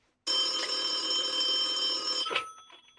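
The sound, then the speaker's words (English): An old-fashioned telephone bell rings in one long continuous metallic burst of about two seconds, loud, then cuts off, leaving a brief fading clatter. “And if you can hold a bottle, you can dial a phone. Give her a call.”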